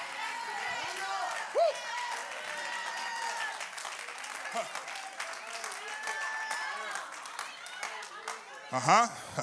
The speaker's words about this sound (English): I'm not asking you to stand up, but I wonder if somebody would just begin to stomp your feet.